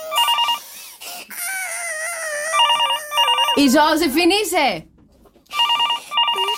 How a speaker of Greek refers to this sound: Αναπάντητες κλήσεις παντού, δεν το σηκώνουμε καλέ. Πάνε τα τηλέφωνα αυτή τη στιγμή, σε βρήκαν όλοι, καλημέρα.